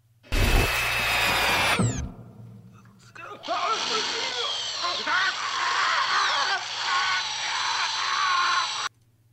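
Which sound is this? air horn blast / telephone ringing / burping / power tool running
power tool running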